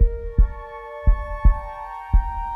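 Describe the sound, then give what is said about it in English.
A heavy, low heartbeat thumps in a steady lub-dub rhythm, loud, over a sustained electronic hum with no voices. “more heartbeat.”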